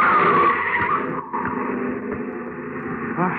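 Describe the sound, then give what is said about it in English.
A car skids loudly on a street, nearly hitting a pedestrian, tires screeching in a sustained, grinding squeal that dips briefly and then continues until the end, with engine rumble underneath. “Look out, Governor. Mind that car.”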